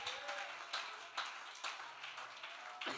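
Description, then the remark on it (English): An audience claps their hands together to thank God for salvation, in a steady, dense patter of applause, with a few sharper claps standing out every half second or so. No one speaks. “Would you clap your hands and thank God for great salvation?”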